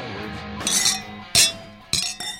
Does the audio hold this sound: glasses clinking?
yes